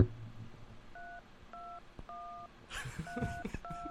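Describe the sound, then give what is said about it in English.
Phone keypad touch tones, played on a phone, beep out a short, simple tune, about five steady beeps with brief pauses between them. Clear, with voices chattering over the last few beeps. “Charles is trying to play Hot Cross Buns right now.”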